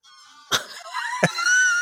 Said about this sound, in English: We're about to be attacked by lots of geese, by the way. A squad's coming. Can you hear this?